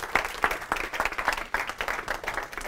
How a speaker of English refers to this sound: So please give Nick a huge round of applause.